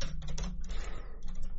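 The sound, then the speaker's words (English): Rapid typing on computer keyboards by two people typing to each other, a quick, uneven flurry of clicks and taps over a low steady background hum, with no voices. “What are you two furiously typing to each other?”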